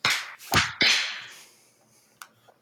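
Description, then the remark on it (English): A group claps together on cue after a count of three, but unevenly: three loud, sharp bursts of clapping tumble out within a second, then fade, followed by one faint stray clap. “On the count of three, we clap.”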